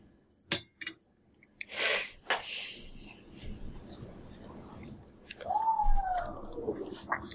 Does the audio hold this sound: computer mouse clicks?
yes